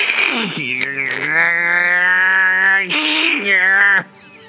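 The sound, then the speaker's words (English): A person imitates cicadas with a loud, sustained buzzing hiss lasting about four seconds, briefly breaking near the end before resuming and then cutting off abruptly. “That's my cicada impersonation. That's how they sound to me.”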